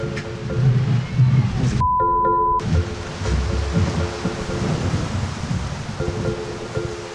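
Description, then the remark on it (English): A low rumble of thunder rolls beneath a steady hiss like rain, briefly interrupted by a short electronic tone before the noisy storm wash continues. “Oh my God, is that thunder?”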